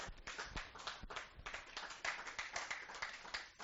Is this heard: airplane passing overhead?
no